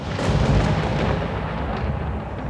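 A deep, rolling thunderclap rumbles loudly and steadily, heavy low booms spreading across the whole span with no voices present.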